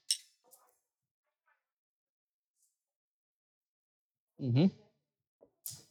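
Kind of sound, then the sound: household object, beer glasses clinking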